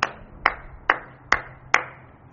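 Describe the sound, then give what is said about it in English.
Five sharp hand claps land at a slow, steady pace, clapping toward a screen, each crisp with a short ringing decay, and no voices in between. “That's what we're doing now. We're clapping through the picture to the screen.”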